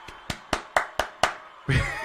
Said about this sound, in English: And guess what? We got them here, and I'm going to do this right quick. Since we got them here. We're going to give them a round of applause since they finally got in here.